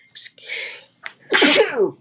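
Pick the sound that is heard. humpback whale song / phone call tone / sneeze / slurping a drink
sneeze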